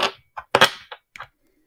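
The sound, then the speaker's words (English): A small six-sided die (D6) clatters across a hard surface in a quick, irregular series of sharp clicks and taps, one louder double knock in the middle, then a final tap after a pause. “roll me a D6.”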